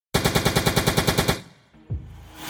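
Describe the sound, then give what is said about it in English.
A rapid burst of about a dozen loud gunshots fires in an even, fast rhythm as 34-year-old John Gilbride is shot by someone with a gun by his parked car in front of his building, then cuts off, leaving a low rumble and a faint thud afterward. No one speaks. “34-year-old John Gilbride has just been shot, 4.6 miles from where the MOVE supporter meeting just finished up at Gary Wonderland's house.”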